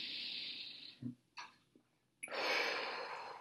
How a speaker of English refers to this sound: Here we go. Eyes closed. One more big deep breath.